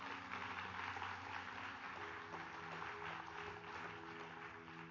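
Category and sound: crowd, audience applauding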